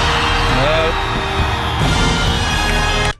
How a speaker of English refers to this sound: Okay, we've got the wind. The wind will do.